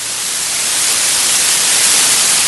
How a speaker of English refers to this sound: A lot of static. Who's that coming from? Not me, I don't think.